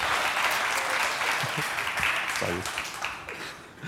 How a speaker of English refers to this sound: But this round of applause is for you because we love guests here, so thank you for being here.